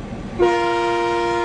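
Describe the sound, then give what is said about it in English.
A train horn of the Blue Ridge Scenic Railway in Blue Ridge, a North Georgia tourist town, sounds one sustained, steady toot that begins abruptly after a brief stretch of low rumbling background noise and holds loud and unbroken to the end. “The Blue Ridge Scenic Railway is just one of the many attractions drawing tourists to the downtown, the quaint restaurants and shops as well.”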